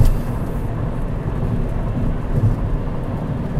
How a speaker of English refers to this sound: Frying oil.